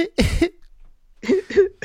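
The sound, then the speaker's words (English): A man who is ill stifles a cough: a muffled cough bursts out, then after a short pause comes a quick run of two or three smaller, held-back coughs with a throaty, voiced edge, with wheezing. No talking. “Just going to hear him wheezing and stifling a cough and just shouting out, sickness be gone.”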